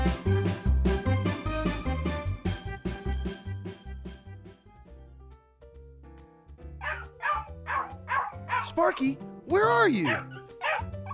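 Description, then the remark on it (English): After a stretch of upbeat music, a dog that has found a giant bone lets out a quick series of sharp barks and high yips, loud, with a voice calling out in between. “You found a giant dog bone?”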